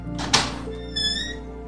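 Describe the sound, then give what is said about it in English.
A single dull thunk of a door opening, short, with a brief scrape around it, then a faint sustained ringing tone as the sound settles. “Now, I started thinking about that because I had just started my day in a positive way, and it was as simple as opening a door.”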